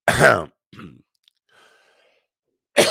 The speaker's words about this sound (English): Excuse me with the cough. Still got some remnants from that stuff.